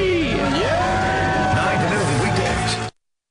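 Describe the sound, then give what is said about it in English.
A debt-free scream on The Dave Ramsey Show: a loud burst of celebratory screaming and cheering from several voices at once, with rising and falling shouts over a dense crowd roar, lasting about three seconds before cutting off abruptly. “Let's hear a great debt-free scream.”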